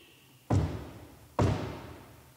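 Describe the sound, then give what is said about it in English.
Two heavy, booming thuds about a second apart as a preacher stomps on the floor during a church service to mimic someone knocking at a door, each with a short ringing decay and no voices. “Now, I know it looks like I'm stomping, but I want you to think of it as the sound of someone knocking.”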